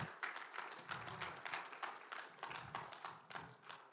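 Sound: church audience clapping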